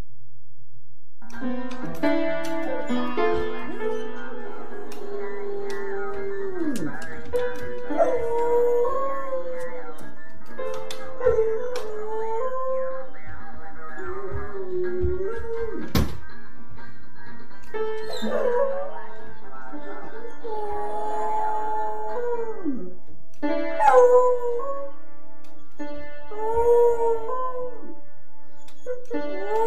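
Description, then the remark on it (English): A dog plays the piano and howls and whimpers in long, wavering, rising and falling cries over steady piano notes, carrying on for about half a minute with short pauses between phrases. “Let's deal with the dog that plays piano.”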